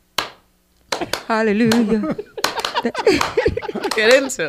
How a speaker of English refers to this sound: The clap is sound like this.